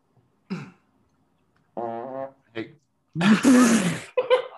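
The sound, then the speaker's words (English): A few short vocal bursts and grunts, then a loud, buzzy, sputtering fart imitated with the mouth, followed by a brief breathy sound. “Fart mode.”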